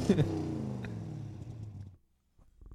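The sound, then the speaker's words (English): A car engine revs loudly, its rumbling pitch sliding steadily downward for about two seconds before cutting off into near silence, followed by a faint low stir. “Oh, I actually do have a vroom vroom.”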